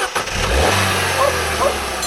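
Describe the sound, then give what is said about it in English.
A car engine rumbles and rises in pitch as it accelerates and the car drives off, a steady low growl with climbing harmonics that holds loud for about two seconds, with no voices. “So how about I give the two of you a ride, and afterward we can celebrate with some ice cream.”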